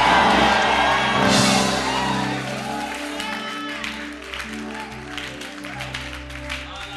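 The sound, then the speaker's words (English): A church audience, called on to give the Lord a shout of praise, erupts in loud shouts of praise and applause, voices whooping and clapping steadily for several seconds over a sustained low musical hum, easing slightly toward the end. “Give the Lord a shout of praise here.”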